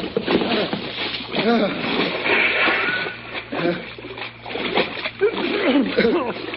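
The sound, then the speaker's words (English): Men jump over the side of a boat into cold water: a burst of heavy splashing and sloshing that continues throughout, while voices shout in a noisy, crowded scramble. “Hey, over the side,”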